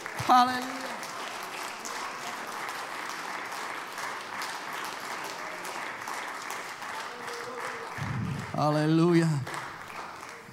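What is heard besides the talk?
audience clapping hands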